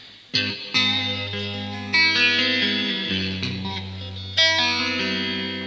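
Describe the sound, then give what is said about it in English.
Electric guitar chords played through a phaser with generous reverb, each strum ringing out and swirling as it fades into the next, several chords over a few seconds with no talking. “I'm going to give that a nice bit of a reverb and see how ambient”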